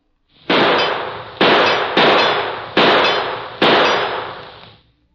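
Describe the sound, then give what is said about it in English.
Five loud gunshots from a gun fired at a target in a shooting demonstration crack in quick, slightly uneven succession, each with a bright metallic ring as it strikes the target, then fading out. No one speaks. “I want you to practice until you can hit that kind of a target 4 out of 5 times.”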